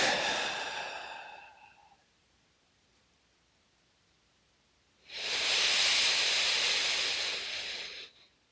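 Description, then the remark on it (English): Slow, deep breathing during a breathing exercise: a long, airy exhale fades out, a few seconds of quiet follow, then another full, hissing breath rises and holds for about three seconds. “So if you have begun, go ahead and start your breathing.”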